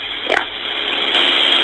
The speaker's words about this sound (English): Yeah, I can hear him in the background. Yeah, do you hear him beating on the door?